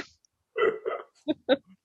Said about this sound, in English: Had to let out a little, had to let out a little burp. To get out the burp before we start recording.